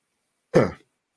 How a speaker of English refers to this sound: Sorry, I'm going to cough here. I'm going to mute myself.